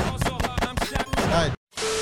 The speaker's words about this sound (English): Gunshots.